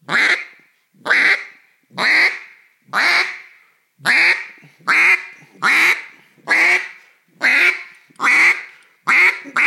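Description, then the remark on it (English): A duck call blown as a greeting call series: a steady run of about eleven loud, nasal quacks, evenly spaced roughly once per second, with no talking. “So that quack is the basis of those greeters. So get that quack, pressurize there.”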